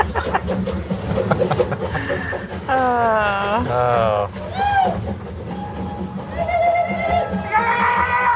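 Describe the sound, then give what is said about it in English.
A Disneyland theme-park train rolls in with a steady low rumble, while loud, shrill wavering whoops and cries rise and fall over it, joined by bursts of overlapping voices. “Speaking of the train, here it comes now.”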